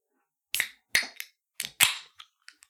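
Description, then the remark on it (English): A can of Hams beer, taken from the fridge, being cracked open: a string of sharp metallic snaps and clicks, a few with short fizzy hissing tails, then softer ticks trailing off, with no talking. “That's a Hams. Sounded like a nice Hams.”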